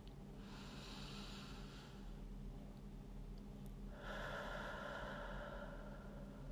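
As part of a short meditation exercise, a slow, deep breath is taken in through the nose, then after a short pause a longer, louder exhale through the mouth. Airy, with no talking.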